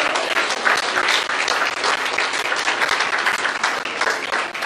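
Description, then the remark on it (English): An audience claps their hands in sustained, dense applause, a hand clap of praise to God, loud and steady throughout with no voices standing out. “If you got anything out of this, give God a hand clap of praise.”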